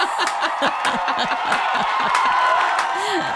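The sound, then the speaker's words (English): A canned applause sound effect: a loud, steady burst of crowd applause, thick with overlapping cheers, whoops and laughter for about three and a half seconds. “This is where you insert the fake applause”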